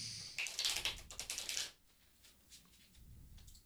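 A deck of tarot cards is shuffled, a burst of rapid, crisp flicking clicks lasting just over a second, followed by near-silence with a few faint taps.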